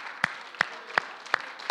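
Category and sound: crowd, audience hand clapping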